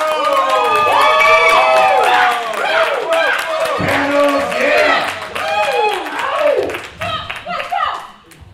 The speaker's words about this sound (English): I'm a little jealous of the neighboring panel, but can we all clap for another panel?